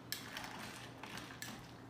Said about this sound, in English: We're just gonna dump all this into our glass. And then we've got some sparkling water. Top that off. Give that a stir.